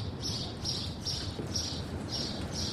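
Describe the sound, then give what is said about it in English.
Birds chirp in a steady series of short, high bursts, about six in a row, from around five or six nests, over a constant low rumbling background. No one speaks. “Birds having a great time here, aren't they? There'll be five or six nests in there.”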